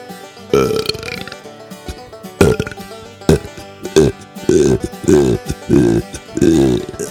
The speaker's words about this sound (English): I gave them multiple wet belches on this one because they got bada bing a boom bum nothing, honey.